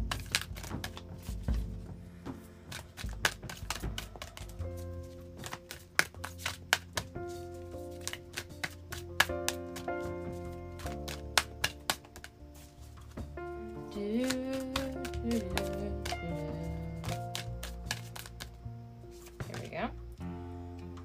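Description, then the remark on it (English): A deck of oracle cards being shuffled, a rapid run of crisp flicks and taps that clusters and pauses, over a steady bed of soft background music. “Hello, can I shuffle properly, please?”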